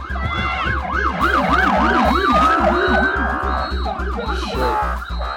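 A police car siren cycles in quick rising-and-falling yelps, loud and continuous, with a second warbling tone overlapping partway through and a steady low engine rumble underneath; no one speaks. Police cars are driving onto a bridge to disperse protesters.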